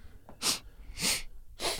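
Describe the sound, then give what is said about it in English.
Three quick, airy sniffs through the nose, evenly spaced about half a second apart, each a short hissy burst of breath with no talking around them. “Again, sniff sniffy.”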